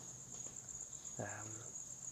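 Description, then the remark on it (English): Crickets chirp in a steady, unbroken high-pitched drone that runs the whole time, with a short murmur of voice partway through. “Edit out the fucking crickets.”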